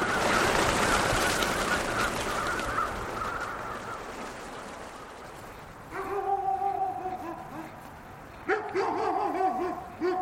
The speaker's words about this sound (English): Pretty soon, the flock gets the message. As thousands of crows flee the trees, their wing beats sound like a rainstorm.